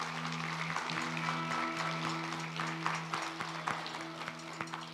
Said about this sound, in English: That was longer than they clapped for me, guys. That was good.